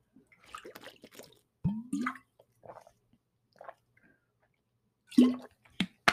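Quiet wet mouth sounds of someone sipping and swallowing water, with a few soft slurps and gulps spread across a few seconds and no talking.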